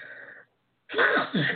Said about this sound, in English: Excuse me. I want to sneeze.